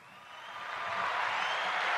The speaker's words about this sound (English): Before you even try to stop me, I'm already doing the applause button.